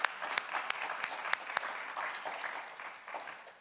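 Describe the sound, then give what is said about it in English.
A church audience claps steadily for a few seconds, a dense patter of overlapping hand claps with a few sharper individual claps standing out, gradually thinning and fading toward the end. “and we'll give him a little round of applause.”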